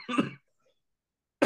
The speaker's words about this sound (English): Excuse me. Told you I would cough.